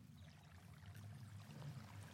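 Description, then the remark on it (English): A steady, continuous rush of flowing water from a stream in an ancient woodland of beech trees in Silent Valley, Ebbw Vale, South Wales, running over stones with a low murmuring rumble and scattered bright trickles throughout. “A stream sparkles through Silent Valley”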